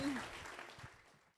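An audience at an author talk at the Midtown Scholar Bookstore applauds the speakers, a dense wash of clapping that starts full and steadily thins and fades out over a second and a half.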